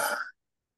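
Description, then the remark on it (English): A short, breathy yawn pushed from the chest after a deep breath in, fairly loud, ending abruptly after a fraction of a second and followed by silence. “And then we're going to take another deep breath in, yawn from the chest.”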